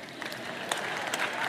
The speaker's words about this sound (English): I heard that clap.